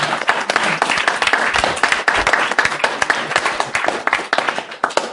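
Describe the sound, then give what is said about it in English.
Steady applause from a group, dense overlapping claps filling the whole stretch at an even loudness, with no one speaking over it. “So big round of applause, and that's your scenario solved.”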